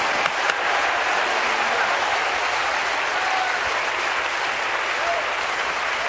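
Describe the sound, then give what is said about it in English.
A large audience at a church service claps and cheers in sustained, dense applause that fills the room steadily for several seconds, with scattered voices calling out amid the clapping, showing interest in revival. “If you feel that way, clap your hands and lift your voice and let God know you're interested in revival.”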